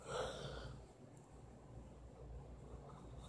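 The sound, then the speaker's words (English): A yawn: a breathy, drawn-out sound with a faint voiced tone in the first half second, then fading into a low, steady rumble with no talking. “Excuse me, I have the yawns.”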